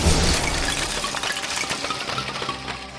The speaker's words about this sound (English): I guess its arm just turns into a spring, and then it straightens and plunges it through. Nice. It just shatters the skeleton in front of you, and just like bits and pieces go flying, like the skeleton's head goes through somebody's window.